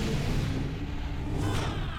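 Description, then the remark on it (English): The door of the holosuite at Quark's, using the big holodeck door sound, whooshes: a steady loud rush of hissing air with a low rumble underneath and a brighter swell near the end. No one speaks. “The sound of the door for the holo suite on Quark's is the big holodeck door sound, but they're smaller doors.”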